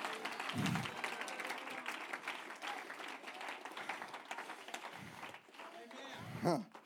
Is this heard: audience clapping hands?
yes